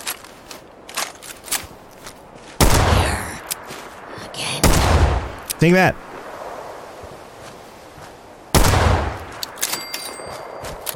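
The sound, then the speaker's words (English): Several loud gunshots boom out at intervals, each trailing into a long, delayed rolling echo off the hills, with sharper pops scattered between and a short spoken phrase. “Is that gunfire echoing?”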